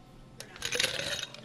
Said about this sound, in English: We're going to put some ice in the mixing glass.